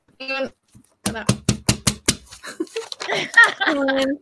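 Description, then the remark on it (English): A sheet of A4 paper is repeatedly folded in half and creased, about seven sharp, crisp presses in a quick steady rhythm, fairly loud, with a short voice before and chatter and laughter after. “I think it does have to be folded in half.”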